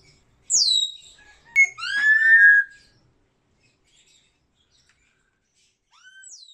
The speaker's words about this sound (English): African gray parrots are mostly known for their abilities to mimic human speech, which makes them one of the most popular avian pets.